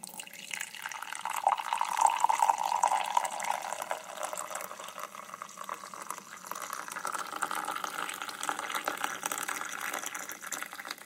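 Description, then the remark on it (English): Black coffee pours steadily from a pot into a recently cleaned mug, a continuous liquid stream whose pitch rises slightly as the cup fills over several seconds, with no talking. “So my wife grabbed a recently cleaned mug and lovingly began to pour the black gold into the cup.”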